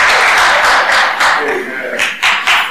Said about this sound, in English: Come on, I'm finished preaching. I want you to clap your hands and stand up with me. Everybody stand.